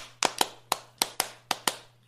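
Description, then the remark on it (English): Seven sharp hand claps land in a loose, uneven rhythm, some in quick pairs, with no talking and only a faint steady hum underneath. “Clap if somebody loves you.”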